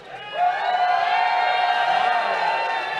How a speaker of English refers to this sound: Everyone who thinks Holmes gets the points, cheer. Everyone who thinks Duncan gets the point, cheer.